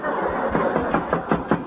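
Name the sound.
knocking on a door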